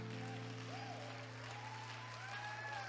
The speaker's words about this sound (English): If you love the Lord, why don't you give that hand clap of praise to him right now?